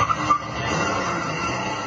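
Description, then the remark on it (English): A loud, steady roar from a car's modified exhaust in Oakland, with a brief high squealing whine at the start before settling into a dense, rumbling drone. No one speaks. “Some Oakland residents will complain about the noisemakers Tuesday night at the city council meeting.”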